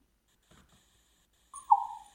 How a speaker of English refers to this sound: The raven has so many different calls, and that's one of my favorite ones, that little sort of water drop one.